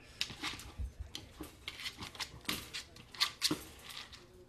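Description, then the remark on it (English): A dog plays with a treat-dispensing toy, heard from a videotape being played: irregular clattering, knocking and rattling as it is pushed around, fairly quiet, with a few sharper clicks and no talking. “I'm going to let this videotape play for a couple of minutes so you can see that this wasn't just a little 10-second blurb that she happened to be interested in the toy.”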